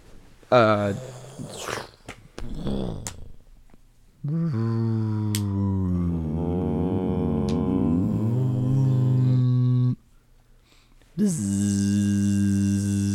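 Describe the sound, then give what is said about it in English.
A voice imitates the hum of a Tesla electric car, which has no gears: after a few short vocal sounds comes a long, steady droning hum with a slight waver in pitch, then a second brief hum after a pause. “So it's just what's electric noise?”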